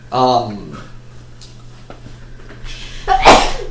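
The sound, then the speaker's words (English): A single loud sneeze: a drawn-out voiced intake at the start, a quiet pause, then a sharp, breathy burst of the sneeze itself near the end, over a faint steady hum. “Bless you.”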